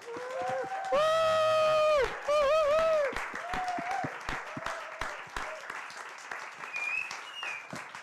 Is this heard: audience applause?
yes